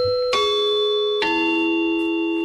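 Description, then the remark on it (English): A doorbell at a front door chimes twice in a ding-dong pattern, a higher note followed by a lower one, each bright tone ringing on and slowly fading. No one speaks. “When Barry Dunn opens the front... Can someone ring?”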